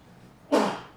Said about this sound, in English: Bless you.